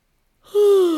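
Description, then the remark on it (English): After a moment of silence, a single loud yawn begins while reaching up on one side to stretch between the ribs: a breathy intake that swells into a drawn-out voiced tone, slowly sliding lower in pitch. “Can you find some space between your ribs by reaching up on one side and yawning?”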